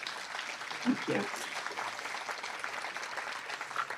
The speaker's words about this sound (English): I hope you could hear the applause. I could.